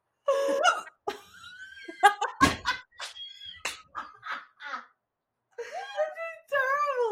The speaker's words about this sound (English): Hiccups are a challenge for some people.